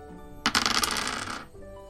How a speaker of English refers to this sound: You have each rolled your first dice of the campaign.